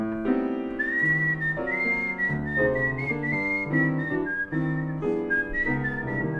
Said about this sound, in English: And you see, when I'm whistling and playing the piano at the same time as a compass, you know, as a...